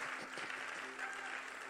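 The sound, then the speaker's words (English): Steady applause from a crowd fills the whole moment, a dense, continuous patter of many hands clapping at moderate loudness with no voices standing out. “Oh, if you are clapping, clap.”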